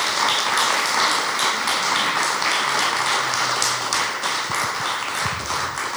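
A sustained round of applause from an audience, many hands clapping in a dense, steady wash that holds strong for several seconds with no one speaking.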